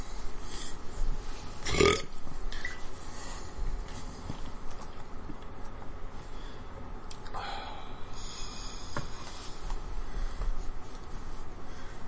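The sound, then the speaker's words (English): A loud burp rips out near the start, followed later by another rumbling belch, with a steady background hiss and no talking. “Keep burping up chicken strips.”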